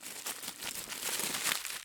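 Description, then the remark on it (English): Tissue paper wrapped on a hand is being unwrapped and crinkled, a steady crisp rustling with brief sharper crackles running for about two seconds, with no voices. “Just untie the tissue paper on my hand.”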